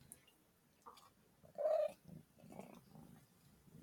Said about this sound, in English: Yeah, a little brrr, and then some purrs. The loudest purrs on the planet from Rotunda.